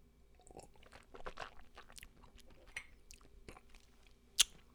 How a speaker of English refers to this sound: Now, when you first sample bourbon, you like to kind of swish it around in your mouth, kind of chew on it. Right, they call that the Kentucky Chew.